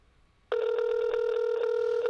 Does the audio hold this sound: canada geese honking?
no